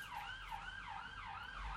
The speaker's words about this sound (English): apart from that police siren that's annoying